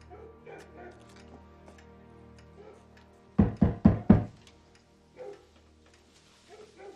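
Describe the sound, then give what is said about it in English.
Four firm knocks on a wooden door in quick, even succession, loud, with quiet voices and soft background movement before and after. “Knock on that door.”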